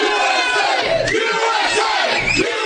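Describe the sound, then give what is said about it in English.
A crowd shouts and cheers together outside the Tillis Gym in New Jersey in the morning as it opens, in a dense, continuous roar, with rising and falling swells of many voices and bursts of louder yelling throughout. “That's a crowd this morning outside the Tillis Gym opening now.”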